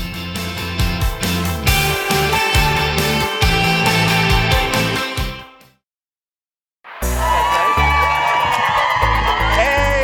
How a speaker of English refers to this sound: At 8:30, check out this crowd. It is Monday morning, President's Day, of course, and we have a big holiday crowd. Sorry, having fun out here in Rockefeller Plaza.